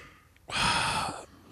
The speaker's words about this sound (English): That burp was brought to you by beer. Beer. Oh, that one stunk too.